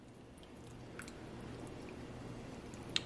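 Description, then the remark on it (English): Faint wet squishing as a soft rubbery toy with air pockets is stretched in water, with a few small squelches and drips and one sharper little click near the end, over a low steady hum. “And I'm going to kind of stretch it out just a bit.”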